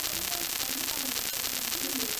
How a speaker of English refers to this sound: Getting a little bit of static. That's not me.